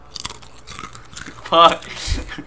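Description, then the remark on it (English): Crisp crunching of someone biting into chips, a few irregular crackly bites with a rustle, and a brief voice sound partway through. “No, don't get eat chips in the fucking podcast.”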